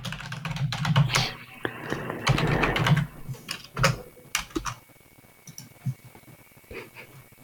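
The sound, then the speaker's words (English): Rapid, irregular clicking of keys on a computer keyboard while searching for a tweet to quote tweet, with bursts of fast typing that slow to scattered single taps toward the end; no voices. “I'm looking for it. I'm going to quote tweet it.”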